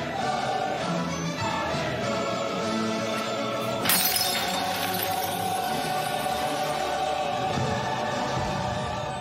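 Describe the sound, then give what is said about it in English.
A glass jar dropped by the character Beth Harmon as she passes out in an orphanage scene smashes on a hard floor with one sharp crash midway through. A brief scatter of tinkling glass fragments and capsules follows, set against a steady background of music. “the headmistress of the orphanage rushes in, followed by the staff, and all of the children, too, right as Beth Harmon passes out, drops the jar, sending capsules and bits of glass scattering all across the floor.”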